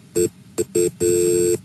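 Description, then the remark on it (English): A short run of electronic telephone keypad beeps: three quick tones of uneven length, then a longer held tone, all clear with no voices; an emergency dispatcher dialing to put the fire department on the line. “Okay, I'm going to get them on the line. Do not hang up.”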